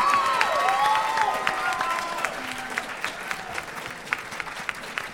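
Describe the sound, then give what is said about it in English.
A crowd applauds steadily for several seconds for the first two people to get up and take part in a silly debate, with dense clapping and a few whistles and cheers near the start, the clapping thinning slightly toward the end. “Now, a big round of applause just for being the first to get up here and do this kind of silliness.”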